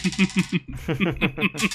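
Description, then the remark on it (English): A quick run of rattling clicks of dice clattering and tumbling across a table, fairly loud, with a brief pause before another burst of clatter. “Okay, let's roll another one.”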